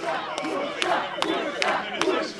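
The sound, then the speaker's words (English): A stadium cheer squad chants the name of Essendon coach John Worsfold in unison after an Essendon win, voices rising and falling in a steady rhythm with sharp accents about twice a second, loud and continuous. “The cheer squad chants out his name.”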